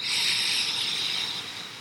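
A long, steady deep breath drawn in through the nose, filling the chest and belly with air, a soft airy hiss lasting nearly two seconds and tapering off slightly at the end, with no voices.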